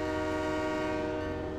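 A train sounds its horn in one loud, sustained blast, a steady layered tone held over the rumble of a southbound train pulling into Euston Square Station in London in 1864, with no voices.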